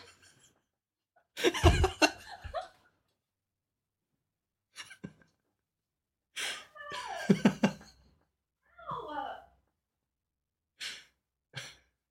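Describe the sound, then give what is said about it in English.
A cat being held lets out a string of short, agitated cries and huffing breaths, several separate bursts with brief pauses, as it squirms, bites and protests at being held. “It is like 100% a documentary about every cat ever. It's, ow, this one's biting me right now.”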